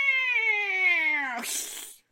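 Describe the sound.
A person dressed up as a cat imitates a cat with a single long, drawn-out meow that slides downward in pitch, then trails off into a breathy, hissing end. Clear, with no other sounds.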